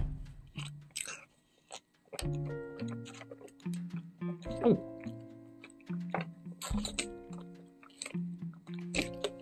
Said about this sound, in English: So let me just put some water in my system before I say this important thing.